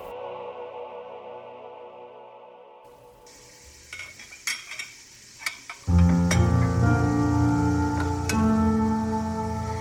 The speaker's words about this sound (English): The sound was almost better than the smell, sizzling and popping, grease spitting up from the frying pan.